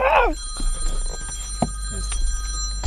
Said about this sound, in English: Sorry, guys. Sorry. I thought my phone was on silent.